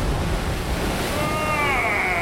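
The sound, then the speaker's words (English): A yellow submarine surfaces from the sea: a steady, loud rush of churning water, joined halfway through by rising, whistling tones as it breaks the surface. No one speaks. “There it is. Oh, my God, a submarine.”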